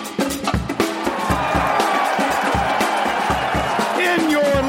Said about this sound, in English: Round of applause.